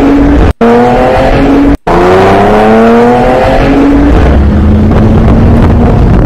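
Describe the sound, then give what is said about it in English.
A roughly 5,000-pound heavy truck with a twin-turbo six engine roars loudly as it accelerates hard, its pitch climbing and dropping through several gear changes, with two brief cutouts early on and no talking. “That's a 5,000 whatever the hell pound truck.”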